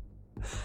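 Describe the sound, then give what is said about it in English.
A voice imitates tusks popping and slobbering: after a near-silent start, a brief wet, breathy rush swells up and ends in one sharp click. “popping his enormous tusks and slobbering down in the darkness under the trees past the end”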